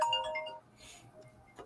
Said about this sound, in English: But unknown caller. That's what happened. Let me turn this phone off. Hold on 1 second.